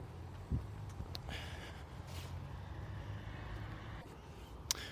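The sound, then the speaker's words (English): A breathy nose blow with a few short snorting bursts of air, over a low steady background hum, with no talking. “Just blow my nose there.”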